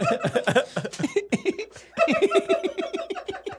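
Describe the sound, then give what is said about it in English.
A person imitates a mouse sniffing around inside a food bag with a quick, rhythmic run of short snuffling bursts, mixed with soft chuckling and breathy voiced sounds and a brief pause partway through. “Yeah, that's when I started sniffing around with my little mouse.”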